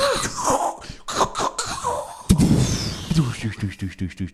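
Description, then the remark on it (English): A person vocally imitates a huge nuclear explosion with a burst of rough, breathy, rumbling mouth noises and throaty blasts lasting a few seconds, loud. “Chucking a nuke in a tornado. Yeah. I'll do the rest of the explosion for it.”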